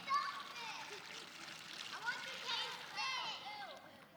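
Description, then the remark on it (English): Water splashes and trickles steadily into a container, a bright gurgle with shifting tones as it fills, running continuously for several seconds. “I hope I have enough water up here.”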